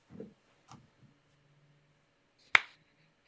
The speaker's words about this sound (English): Start. Start and then clap on screen.